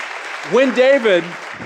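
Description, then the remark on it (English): Steady, dense clapping from a crowd fills the whole moment, with a single voice rising briefly over it in a drawn-out call. “So here's this, amazing, you can clap for that.”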